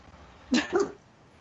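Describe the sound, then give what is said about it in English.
A pet dog named Josie, upset by someone else moving in, lets out two quick barks in close succession, moderately loud, then falls silent. No one is speaking. “I think someone else is moving in and my dog just can't handle it.”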